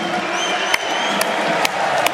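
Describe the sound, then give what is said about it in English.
A huge Wembley stadium crowd at Crouchfest cheers in a steady, dense roar, broken by four sharp, loud cracks spaced roughly half a second apart. No one speaks over it. “Let's give another wave to the Wembley crowd at Crouchfest.”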